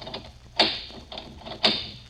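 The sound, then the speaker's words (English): Two sharp metallic clacks about a second apart, each trailed by lighter clicking and rattling, as two of the three locks on a store door are turned and unlatched. No one speaks. “There's three locks in the store. They only turn two.”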